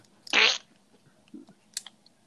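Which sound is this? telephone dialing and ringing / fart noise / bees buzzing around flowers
fart noise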